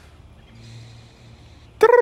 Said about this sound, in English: There are more birds out here, and they're so beautiful. And I don't come outside. It's so dope. Oh my God. The first day I come outside and I'm doing this and I see birds.